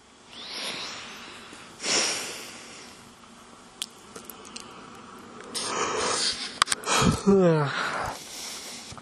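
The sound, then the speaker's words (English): A breathy yawn: a long airy inhale, then a voiced groan that slides downward in pitch near the end. Softer breaths and small mouth clicks come before it. “That's just bored, the boredness of yawning.”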